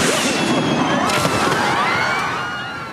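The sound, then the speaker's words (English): Fireworks crackle and pop continuously in a dense, hissing barrage, with a sharper burst about a third of the way in, the noise gradually thinning toward the end. “Samy, t'es sûr de toi, là, pour les feux d'artifice?”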